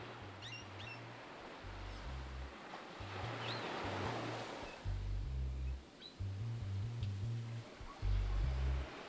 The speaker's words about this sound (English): you, it's not just a retreat, but a sanctuary that's become an extension of your DNA, where the sound of the waves and the rustling palm leaves echo your long-lasting connection to Faraway Bay.